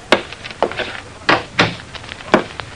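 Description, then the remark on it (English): An office door opens as a visitor enters, with a series of sharp clunks and knocks, the latch and frame thudding several times in quick, uneven succession. No one speaks. “The little man who entered my office smiled diffidently at me.”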